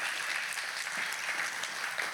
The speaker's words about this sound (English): And you all have to know, first things first, I love your pastors. They are great people. You can clap for that.